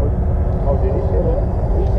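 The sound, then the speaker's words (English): A tiny engine of a subsonic aircraft starting up, giving a loud, steady low rumble with a slightly wavering mid-pitched whine on top, continuous from start to finish. “And you know it's the subsonics coming when the engine starts and you get this.”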